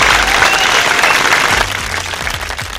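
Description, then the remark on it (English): A crowd applauding steadily, a dense wash of many hands clapping that stays loud, then eases slightly past the midpoint with a few individual claps standing out. “Claps for me, friends.”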